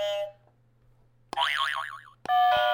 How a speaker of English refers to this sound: And as you can probably hear, they have buzzers in their hands. I'm going to regret this already. Yeah. Go ahead and buzz because you know you want to.